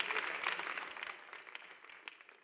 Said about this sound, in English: God bless you for clapping.